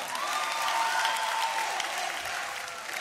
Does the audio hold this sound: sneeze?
no